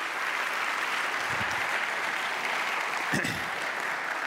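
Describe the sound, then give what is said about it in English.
Steady audience applause honoring volunteers, a dense, even wash of many hands clapping that holds at a constant level for several seconds, with no one speaking over it. “I want to give one more round of applause for our volunteers.”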